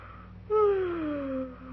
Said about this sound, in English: Will you please stop yawning? It frightens me. Why? Your mouth is open, and I'm afraid you're going to talk.